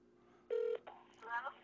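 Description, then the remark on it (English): A single short burst of a telephone ringing tone as an outgoing call rings early in the morning, clear and steady, followed by muffled talking and faint line noise. “So it's ringing. Let's see if she answers this early or if she's had her first cup of coffee.”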